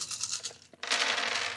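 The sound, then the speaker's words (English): Ten dice rattle and clatter, a brief scrape and shuffle giving way to a steady, dense rattling that keeps going until the end. No one speaks. “Can you roll 10 dice, please?”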